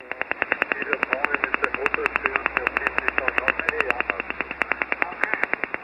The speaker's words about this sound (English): He says that the latest over-the-horizon radar signal was about 10 kilohertz wide when it was heard and recorded on 14.305. and that it kind of sounded a lot like the infamous Russian woodpecker radar system of days gone by.